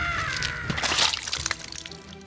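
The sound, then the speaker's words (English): A sudden wet, crunching burst as a head erupts in a shower of blood and gore, followed by squelching splatters and dripping liquid that trail off over a couple of seconds, fairly loud. “And my manager's head erupted in a shower of blood and gore.”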